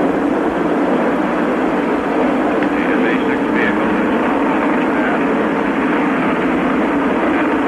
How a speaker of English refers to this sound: And let's hear some sound from that mission, that famous mission that made John Glenn the first man to orbit the Earth. Ignition, liftoff, the MA-6 vehicle has lifted off. The MA-6 vehicle has lifted off. Trajectory looks good.